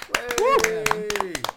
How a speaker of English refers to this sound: Congratulations to Christopher R. Moore. Yeah. Big shout out. Everybody give Christopher R. Moore a cheer.